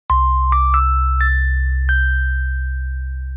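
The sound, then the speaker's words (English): A bell sound effect rings out in five quick strikes, each a little higher in pitch, the tones overlapping and lingering over a steady low hum, with no one talking. “It's a pity bell. I've been trying this whole time to get the bell.”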